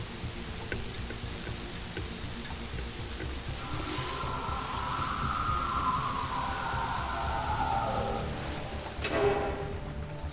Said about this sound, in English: I can't hear anything over the rain and the noise of this train.